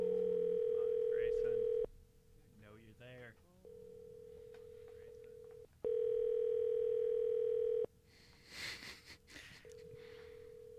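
An outgoing phone call rings with no answer: two long, loud ringback tones about four seconds apart, with a fainter steady tone between them and someone murmuring faintly over the line.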